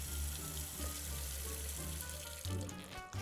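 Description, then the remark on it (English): Tap water runs steadily as a glass is rinsed, a continuous hissing splash with a low hum underneath and a brief shift in the flow near the end. No one speaks. “I'll rinse it off.”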